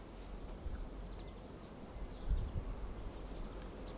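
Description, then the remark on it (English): Faint birdsong in a garden in spring: sparse high chirps scattered over a low, steady background rumble, with no one speaking. “I can hear birds singing in a way that I couldn't a month ago.”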